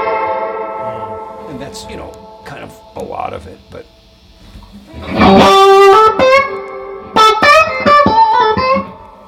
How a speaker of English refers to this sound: I dig reverb, you know, and if you like a lot of reverb, we have a lot of reverb for you. And a lot of adjustment over its sound.